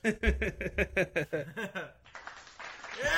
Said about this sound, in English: Oh, my. Where's the applause sound effect?